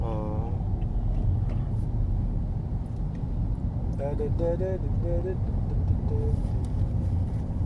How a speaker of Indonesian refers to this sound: Wah gila macetnya. Ini udah mulai lancar, alhamdulillah. Lancar. Aku paling gak betah macet.